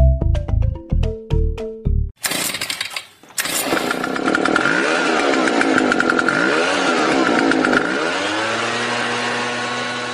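A few quick musical notes, then a leaf blower's small engine roars to life, droning loudly and steadily with slight rises and dips in pitch until the end.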